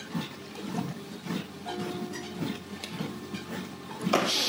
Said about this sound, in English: Let's get some water here.